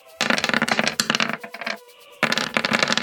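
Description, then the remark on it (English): A bunch of dice, five eight-sided dice rolled for damage, rattle and clatter across a hard table in two loud bursts separated by a brief pause, bright clicking impacts with no talking. “16 on the dice is going to be a hit. Let's roll a bunch of damage against Echo 7.”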